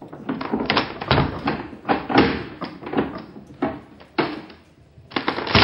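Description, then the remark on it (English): A locked office door being pried open with a crowbar: a loud run of sharp cracks, knocks and creaking wood-and-metal strain at an irregular rhythm, with no one talking. “When we got the door open, we were pretty surprised.”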